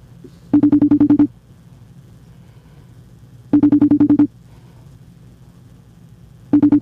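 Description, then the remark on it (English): A phone rings unanswered: three loud trilling bursts, each under a second, repeating about every three seconds over a steady low engine-like hum, with no voices. “He don't want to answer.”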